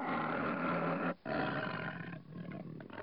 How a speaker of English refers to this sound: looked over to the rocks to see the lion, but he'd gone. In the distance, she heard a faint roar of farewell.